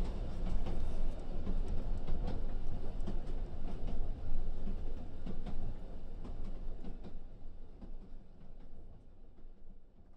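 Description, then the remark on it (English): A train rolls steadily along the rails at night with a continuous low rumble and scattered metallic clicks and clacks, loud throughout, with no talking. “And the pulls out the window into the night as the train moves on.”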